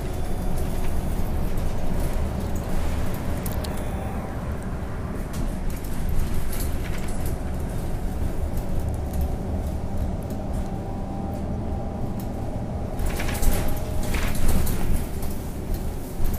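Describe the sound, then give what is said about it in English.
Steady low engine rumble and road noise fill the space from inside a moving bus, with occasional rattles and clicks over the constant drone and no one talking. “I am on the right bus.”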